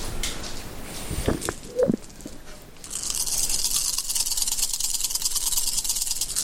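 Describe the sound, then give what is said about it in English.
A handful of 13 dice, rolled for an unarmed attack in a game, clack a few times, then rattle in a steady, dense, bright clatter for several seconds, moderately loud, with no one talking. “Get that nice dice roll sound.”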